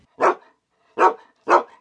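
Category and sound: animal, dog barking loudly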